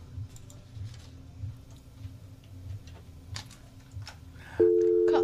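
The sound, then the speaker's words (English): Faint ticking clicks over a low line hum, then near the end a loud, steady telephone busy tone suddenly cuts in and holds after the caller hung up. No one speaks. “Yeah, they hung up.”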